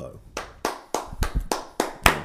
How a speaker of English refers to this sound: I'm waiting for the claps.